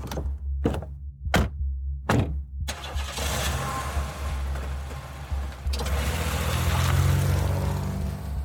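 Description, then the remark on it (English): A car collision at a stop sign: four heavy, evenly spaced thuds in quick succession as a rental car is hit by another car and lands in a snowdrift, followed by a loud, sustained rush of engine rumble and grinding noise, with no talking. “at a stop sign, I'm hit, and my rental car lands in a snowdrift.”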